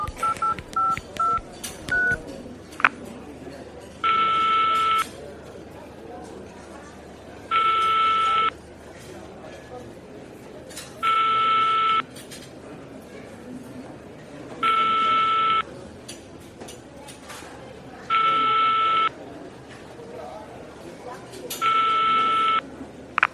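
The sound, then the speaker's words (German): Phone keypad dialing tones, six sustained beeps at a slow, even pace, each lasting about a second, preceded by a few quick short beeps, over a low, murky background hum. “Hast du die Nummer? Ja, die müsste ich noch zusammenkriegen.”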